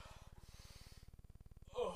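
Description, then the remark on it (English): A dog in a room breathes hard and pants rapidly, a steady rhythmic huffing of quick breaths, ending with a louder snort-like puff. “He's breathing really hard in my room.”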